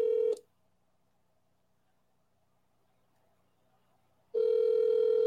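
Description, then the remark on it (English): A phone call ringing tone as someone calls a friend: a steady electronic ring sounds briefly, then about four seconds of near silence, then the ring starts again, loud, with no one talking. The friend does not pick up. “It's ringing.”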